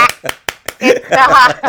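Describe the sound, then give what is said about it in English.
Four quick, sharp hand claps in a steady rhythm, then voices break into laughter and excited vocalizing that overtakes the clapping. “We're going to clap that one out.”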